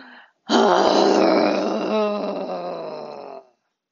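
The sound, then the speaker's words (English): A person lets out a long, loud, rough growl on one exhaled breath during a breathing exercise, lasting about three seconds and fading slightly toward the end, preceded by a brief soft breath. “Oh, maybe it's a growl.”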